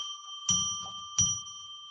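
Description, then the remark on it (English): A bell rings with a clear, sustained tone. It is struck twice about a second apart, each strike adding a soft thud, and the shimmering note lingers throughout with no voices. “So I'm going to now ring a bell three times to declare a sacred space, and we'll jump right into the readings.”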